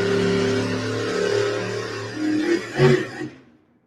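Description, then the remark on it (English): A four-wheel drive pickup engine drones loudly and steadily, then revs up in a sharp surge near the end before quickly dying away to silence as the driver pulls back on the throttle when the truck starts bouncing, in a four-wheel drive pickup class competition. No voices. “If things start to go sour, he can pull back on the throttle and get one more shot.”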